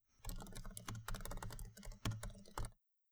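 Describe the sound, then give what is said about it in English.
Rapid, uneven clicking of keys on a computer keyboard, a steady stream of crisp keystrokes for nearly three seconds with no voices, then silence. “I'll include 4 seconds of typing noises so you can understand what we're doing, but we'll skip to the good part because it's just going to be a lot of typing for the next little bit.”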